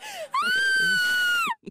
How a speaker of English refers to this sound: It's the scream of horror. Oh, yes. It's the scream of horror.